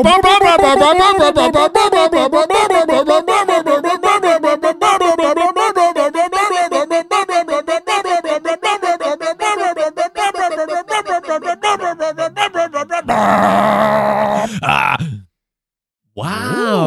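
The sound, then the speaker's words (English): A loud bunker alarm, played by a machine, warbles continuously in a rapid, wavering up-and-down pitch for about thirteen seconds, then turns rougher and breathier before cutting off. “This bunker alarm is for you.”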